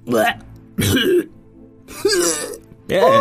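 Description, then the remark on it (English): A voice hacks and gags in four loud bursts, a throaty retching cough as a creature coughs up a hairball and a little golden globe falls out of its mouth, with short pauses between each strained heave. “Can't you see the poor things coughing up a hairball?”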